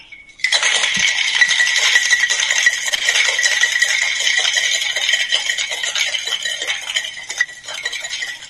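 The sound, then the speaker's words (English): A cocktail shaker full of ice, holding a cocktail with orange juice and two drops of bitters, rattles vigorously and continuously for about eight seconds, a loud, rapid clattering of ice against metal, with no voices. “Pop that all together in a nice little shaker.”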